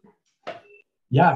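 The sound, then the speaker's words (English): A short electronic tone from a mobile phone left switched on cuts in briefly, a clicky burst followed by a steady beep, before a person starts talking loudly. “Yeah, I forgot to turn my phone off there.”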